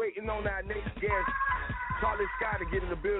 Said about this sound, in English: excuse the echo and all that shit.